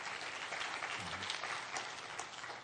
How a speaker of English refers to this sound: Yeah, you can clap.